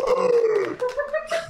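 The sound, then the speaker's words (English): A person voices a dinosaur screech to celebrate correctly spelling "pterodactyl" in a dinosaur spelling bee: a loud, raspy, strained cry that slides downward in pitch, followed by a few shorter rough, breathy bursts. “No, I can celebrate with a dinosaur screech.”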